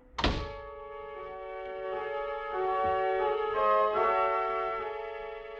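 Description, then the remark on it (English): A building's door lock releases with a sharp thunk after a buzzer button is pushed, followed by a steady electric buzz that holds for several seconds, its tone wavering slightly before fading near the end. “I pushed another button, anyone at random. The door was released, and I was in.”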